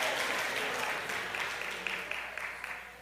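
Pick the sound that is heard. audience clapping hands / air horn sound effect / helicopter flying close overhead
audience clapping hands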